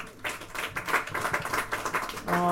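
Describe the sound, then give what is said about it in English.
An audience at a City Lights Books event co-sponsored by California Sunday Magazine breaks into applause, a steady, dense clatter of many hands clapping at moderate volume for a couple of seconds before a voice begins to speak at the end. “Yes, worthy of applause.”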